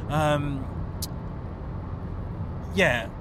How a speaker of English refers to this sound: So there's weird whistling going past my car.